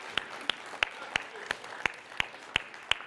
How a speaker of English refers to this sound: Oh, okay, round of applause